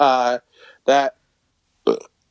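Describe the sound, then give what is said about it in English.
A loud burp rings out, followed by a short throaty sound and two more voiced bursts with brief pauses between them, with no other noise around. “Just that burp.”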